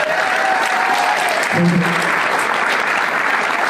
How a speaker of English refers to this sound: Hey, everybody! Let's applaud for me one more time.